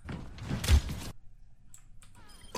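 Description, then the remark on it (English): An arrow sound effect, the sound of Hanzo's arrow: a broad rushing burst ends in a heavy thunk, then a quiet stretch with faint ringing tones and one more short hit at the end. No one speaks. “That was just the sound of Hanzo's arrow, I guess.”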